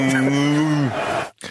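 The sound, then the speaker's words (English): A person imitates a cow with one long, low, steady moo that bends downward as it trails off, loud, followed by a brief shuffle of noise. “gone moo”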